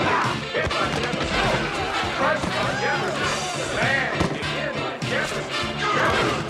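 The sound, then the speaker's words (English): Loud, repeated crunching impacts of football players colliding in tackles in a film clip, mixed with shouting voices and a busy crowd-like roar that stays dense for the whole stretch. “Smashing the shit out of the team and the other team advanced.”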